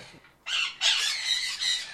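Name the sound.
pet bird squawking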